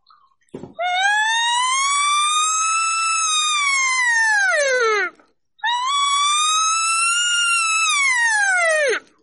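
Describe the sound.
Two long, loud wavering 'siren' tones from an elk call, each climbing in pitch, holding, then sliding down at the end, with a short pause between them, with no talking.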